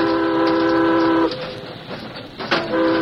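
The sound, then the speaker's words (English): A steam train whistle, sounded as a warning to riders on the tracks ahead, gives a loud, steady blast of over a second, stops abruptly, then starts sounding again, all over the continuous chugging rumble of a moving train. “Give a warning!”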